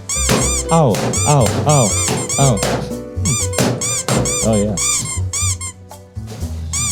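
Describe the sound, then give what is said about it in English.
Rubber balloons squeak loudly as they are squeezed in an attempt to pop them: a rapid run of high, whining squeals that bend up and down in pitch, with a few short spoken exclamations mixed in. “Can anybody help me pop the balloons?”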